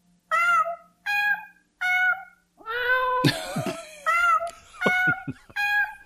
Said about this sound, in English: Cat clock.